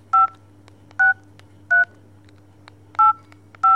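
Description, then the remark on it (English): Five short telephone keypad tones, each a steady two-pitch beep, pressed at uneven intervals over a low, constant electrical hum with no voices, as a caller keys in a reply on the phone. “She calls me back and gives me her reply blindly, like floating a bottle with a message into the sea.”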